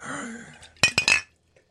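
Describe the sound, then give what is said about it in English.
A glass bottle knocks and clinks three times in quick succession, bright and ringing, as it is nearly smashed and then caught, after a soft murmur of background sound. “You nearly smashed your bottle.”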